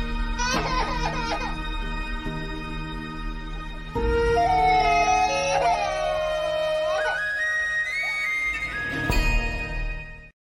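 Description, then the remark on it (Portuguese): An exaggerated, cartoonish crying sound effect: loud wailing sobs that swoop up and down in pitch, running continuously for about ten seconds with no one talking. “Todas as semanas há quem chore, portanto o choro continua presente.”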